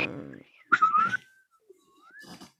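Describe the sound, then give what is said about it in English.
A person whistles sliding pitches, imitating a slide whistle, rising and falling in a few short glides. Brief bursts of voice come before and after, and the whistle is moderately loud. “You need a slag whistle.”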